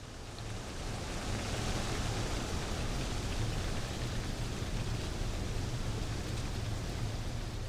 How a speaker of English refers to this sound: When the wind catches the trees, especially in the mornings, it seems, they rustle just like waves. It sounds like water on pebbles. So it's a beautiful sound, especially in the morning when I'm going to Mass.